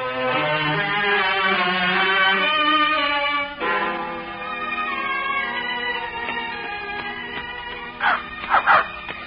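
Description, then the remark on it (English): A dog whimpers and whines in drawn-out, pitched cries, then lets out a few sharp barks near the end, fairly loud, with no one speaking. “Did you have to bring your dog along, too?”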